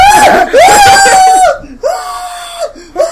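A man screams loudly in long, strained bursts: two drawn-out cries, a brief pause, then another sustained scream and a short final yell.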